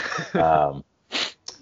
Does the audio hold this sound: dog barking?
no